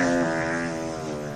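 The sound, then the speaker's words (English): A loud, sustained fart sound effect, played as a joke to fart on whistleblowers: a buzzy low-pitched blast lasting over a second that drifts slightly downward in pitch and holds steady without fading, with no talking over it. “Yeah, let's fart on those whistleblowers, man.”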